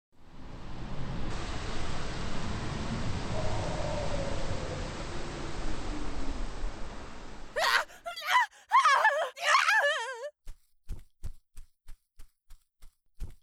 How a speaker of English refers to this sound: I think the scream came from this direction.